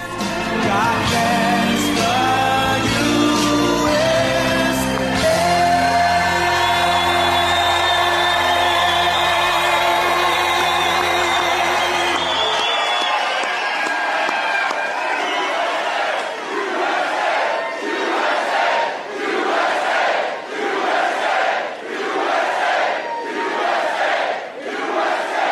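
A large crowd at a Donald Trump rally in New Hampshire roars and cheers loudly over booming music, then the music drops away and the crowd keeps cheering and chanting in a steady, rhythmic pulse.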